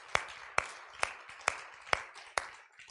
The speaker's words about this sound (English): Just give him a hand clap of praise.